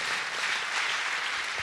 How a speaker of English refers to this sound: Amen. Amen. Can we clap for the Lord?